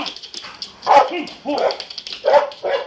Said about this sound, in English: They just let this dog. And I'm telling you right now, I ain't coming out. I'm not coming out. There's a fucking dog.